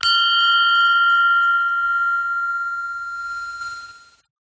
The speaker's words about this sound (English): Okay, so there's a fire alarm going on.